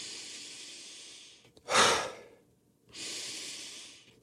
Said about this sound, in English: But now we're nasal breathing, but with a mouth exhale.